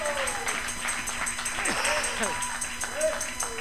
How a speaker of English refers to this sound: Well, hallelujah. It'll lead you into all truth and righteousness. Give him a hand clap tonight.